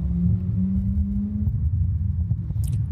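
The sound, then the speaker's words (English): A steady, low rumble of cars passing by fills the whole stretch outdoors, with a droning hum running through the first half and a faint higher hiss near the end. No one speaks. “I am doing this outside, so apologies if you hear cars and stuff passing by and all that.”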